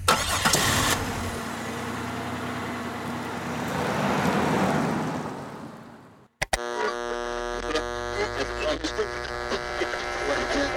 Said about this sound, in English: Okay, so the truck putters off down the dirt road, bouncing around on its suspension. Obviously, this is it's barely a road.